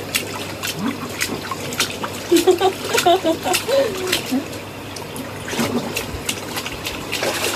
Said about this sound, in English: I'm fingering the water.